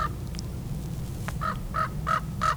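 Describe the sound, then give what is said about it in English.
A raven calls four times in a steady series of hoarse, croaking notes, each short and clearly heard over a constant low rumble of background noise. “Oh, here comes a raven.”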